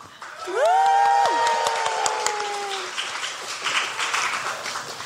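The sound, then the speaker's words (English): A live-show audience breaks into steady applause to welcome an audience member brought up on stage, many hands clapping at once, with a couple of rising whoops and cheers over it early on before the clapping carries on alone. “Everybody, please give a round of applause for our new friend,”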